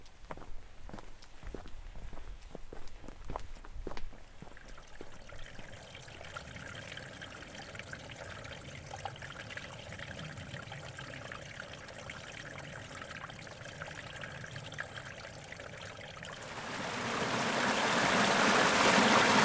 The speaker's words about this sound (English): Here's another short sample of some of the ambient sound from Great Smoky Mountain National Park.